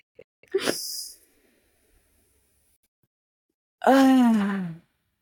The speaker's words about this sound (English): Let's take a deep breath all together.